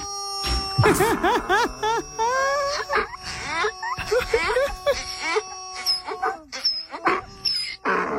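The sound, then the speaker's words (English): A squeaky rubber chicken toy, a gift for a pet donkey named Donkey, squeals again and again, each squeeze a loud, high, wavering honk that bends up and down in pitch, with short gaps between bursts and no talking. “So this woman bought Donkey a squeaky rubber chicken.”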